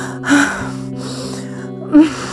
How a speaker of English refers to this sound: I gasp for air as I soar through the clouds.